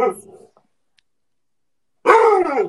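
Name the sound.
dog barking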